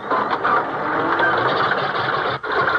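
A car engine cranks with a steady, loud grinding whir but never catches, pausing briefly near the end before churning on again.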